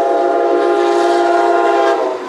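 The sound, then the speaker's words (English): A loud, sustained train horn blares steadily for a couple of seconds, its harmonic tones holding strong before tapering off slightly at the end as the train passes. “Here comes a train.”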